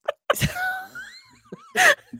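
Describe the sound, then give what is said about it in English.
Sneezing during a sneezing fit: a sharp burst, a drawn-out, wavering vocal inhale, then a loud explosive sneeze, followed by a small breathy sound at the end. “just acknowledge that I'm having a sneezing fit”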